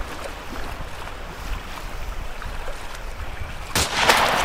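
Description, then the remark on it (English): Steady water and wind noise, then a sharp, loud crack near the end followed by a splashy burst, like a gunshot and a round hitting the water, as someone swimming in cold water is shot at. “Someone's shooting at me!”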